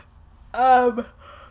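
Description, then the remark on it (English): A person yawns once, a drawn-out voiced yawn that slides downward in pitch and trails off into a softer, breathy fade. “That's me yawning.”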